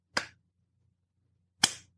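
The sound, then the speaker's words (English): Two sharp, isolated hand claps, deliberately forced rather than genuine, sound about a second and a half apart, each a crisp single smack with a quick decay, with only a faint low hum between them and no talking. “You can tell it's not a genuine clap.”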